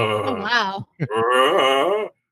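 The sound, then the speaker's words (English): A voiced, pained groan that rises and wavers, then breaks off, followed by a short grunt and a second longer, strained moan: a video game character's damage noises, bugged so they play while the character shoots arrows or a gun. “It's like, I think that that's probably like the damage noises, like they're being hit or falling or something along that lines, and they accidentally put it onto the battle noises.”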